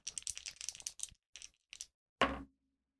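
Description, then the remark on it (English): Two six-sided dice rattle and clatter across a hard surface in a quick burst of clicks, a couple of small bounces, then one final sharp knock as they settle. No one speaks. “So he is going to roll plus sly, which is plus one, on 2d6.”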